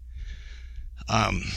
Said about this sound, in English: As you can tell, my breathing is already somewhat labored. I've probably walked an eighth of a mile.